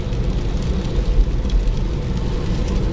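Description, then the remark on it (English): Steady low rumble and road roar from inside a small hire car cruising at speed on the M1 motorway, continuous and fairly loud with faint hissing on top, no voices. “I'm in the little hire car, winging it down the M1, heading down to my mum's.”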